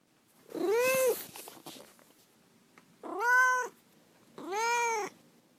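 A cat named Duarte meows three times, each a loud, drawn-out, rising-and-falling cry separated by short pauses, with no one talking.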